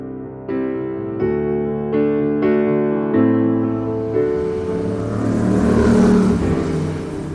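A heavy vehicle's engine revs up in several stepped surges, like a bus pulling away, then gives way to a steady roar and hiss of passing road traffic, at Bus Stop K on Goldhawk Road, W12.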